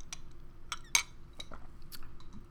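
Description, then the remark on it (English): A clear glass straw clanks against melting ice in a glass of seltzer: several sparse, light clinks over about two seconds, one brighter with a short ringing tone, over a soft low background hum. “The clanking is, I have clear straws.”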